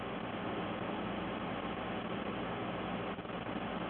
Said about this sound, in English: Oh, hearing some feedback, static.